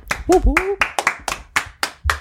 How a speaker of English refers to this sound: I like that we all dropped our microphones and clapped. You could have just added that in post, but that's fine. We clapped for ourselves